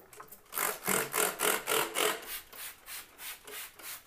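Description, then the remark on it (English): Antibacterial spray is pumped into a sink in a quick series of about ten hissing bursts, steady in rhythm, loud at first, then softer toward the end, with no talking. “But I'm going to use this antibacterial spray in the sink.”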